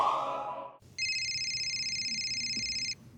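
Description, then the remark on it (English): A phone alert tone sounds: a steady, high-pitched electronic chime that holds for about two seconds with a faint rapid flutter, preceded by a brief lower buzzing tone. “That's an alert on your phone letting you know it's 10 a.m. on a Sunday and you just woke up and your head is pounding and you have zero ibuprofen because you were out boozing all night and didn't think to plan ahead.”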